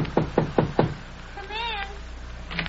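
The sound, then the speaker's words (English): Four quick, evenly spaced knocks on an apartment door, sharp, followed by a short, high, wavering cry and a faint rustle. “Knock on that door, will you?”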